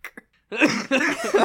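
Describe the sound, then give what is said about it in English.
Two quick, short coughs, then a brief pause before a longer, louder, raspy coughing fit, with no talking. “I'm glad I can make you cough with my jokes.”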